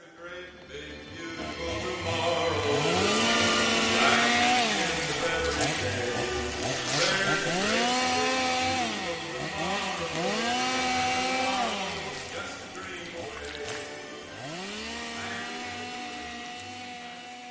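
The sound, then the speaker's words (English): A chainsaw runs loud, its engine revving up and down in repeated surges over a steady idle, with a harsh, buzzing roar throughout. “She lowers the face shield and picks up the chainsaw.”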